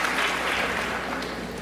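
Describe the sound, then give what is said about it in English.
Steady, dense applause from a crowd at the 2013 Scripps National Spelling Bee for the only speller remaining in round 15, sustained and fairly loud throughout with no pauses, a broad wash of clapping hands. “Enough applause.”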